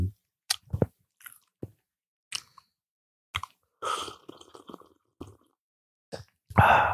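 Slurping sips of hot Keurig coffee with two creams, taken right into the microphone. Scattered wet mouth clicks and smacks lead to a longer slurp midway and a loud, breathy sip at the end, with no talking.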